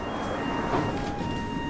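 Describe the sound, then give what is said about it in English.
An underground train arriving at Brixton, where it terminates, rumbles steadily, with a constant high electric whine over a dense low roar and faint clatter, and no voices. “This is Brixton, where this train terminates.”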